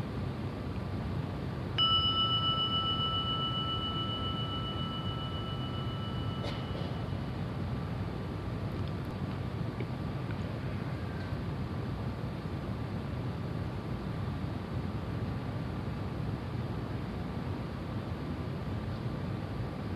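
A single meditation gong is struck once and rings out with a clear, sustained tone that slowly fades over many seconds, heard against a steady low background hiss and rumble. No one speaks.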